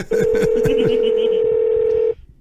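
A single steady electronic telephone tone sounds loud, held unbroken for about two seconds before cutting off, with faint voices murmuring underneath.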